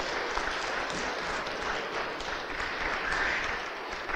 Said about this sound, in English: If we can all maybe just stand up and give him a round of applause as we prepare to close.